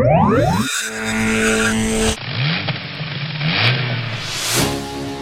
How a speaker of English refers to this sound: Nice car, sir. Is it yours? Is it a Rolls or a Bentley? It's a Bentley. Have you got your fuel rationing vouchers? Can you get extra ones when you have a big fuel guzzler like this?